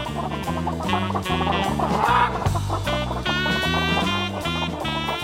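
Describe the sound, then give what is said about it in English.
Rubber chicken squawks honk in a quick rhythmic pattern over a steady, bouncy musical backing, loud, with no one talking. “And what happened then was that they tossed 925 rubber chickens in the air. A church in Canada tossed 999 rubber chickens.”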